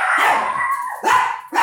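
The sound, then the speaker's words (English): Dogs barking and howling at the place where a recording is being made, in a rapid series of loud, drawn-out yelps, with short breaks between bursts and no speech. “We had some dogs barking going on where we're recording right now, so we took a quick break.”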